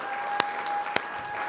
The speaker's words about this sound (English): And man, by the way, let's give it up for our baptism candidates. Can we clap for them? Can we?